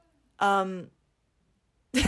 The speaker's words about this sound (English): did you hear that yawn in the back? Yeah, what was that? That was my mom. That was your mom? Yeah. I love your mom with all my heart. I'm not kidding you. I thought that was an animal outside.